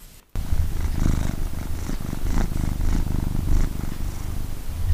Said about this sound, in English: Purring by Storm.